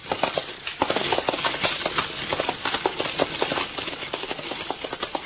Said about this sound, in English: High swaying coach rattled off down the road